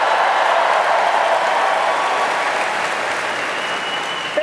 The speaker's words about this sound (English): Well, I will tell you, they're overcast, but I'm about to get a bigger applause because I'm actually from, born and raised, the Tanglewood-adjacent town of Pittsfield, Massachusetts.